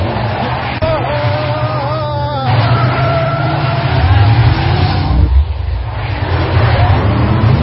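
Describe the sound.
A powerful car engine roars loudly, driving fast with a steady, throbbing drone that swells slightly partway through, while voices talk over the engine noise.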